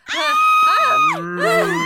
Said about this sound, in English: Mummy? I heard patrons screaming mummy.